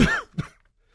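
A loud cough: one harsh burst followed a moment later by a shorter, throatier second one, then quiet. No one speaks.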